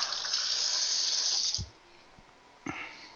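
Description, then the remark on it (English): A steady rush of tap water runs for about a second and a half as someone rinses their hands, stops with a soft clunk, then bursts on again briefly. No one speaks. “Rinse my hands off here.”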